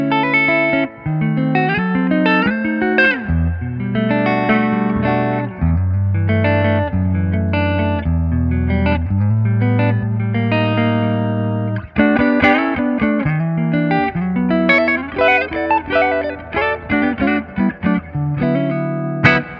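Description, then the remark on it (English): A clean electric guitar through an amplifier plays a steady run of chords and melodic single notes for about twenty seconds, fairly loud, with no voices. “Okay, so you would you mind just kind of showing a little bit more of these tones in this thing?”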